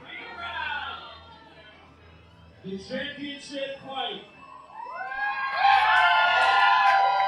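A rowdy, drunken crowd yells and shouts over one another, with whoops and cheers rising in loud bursts and building to a sustained, raucous roar by the end.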